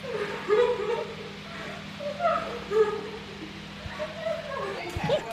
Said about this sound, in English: … are going to be sitting on the floor and they're both going to be giving their best Oscar-worthy crying